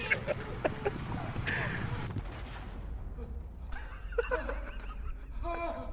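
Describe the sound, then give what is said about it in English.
An animal stampede thunders, a dense, rumbling roar of pounding hooves that eases midway, followed by shrill animal cries and squeals over a lower rumble. “Getting trampled. Stampede.”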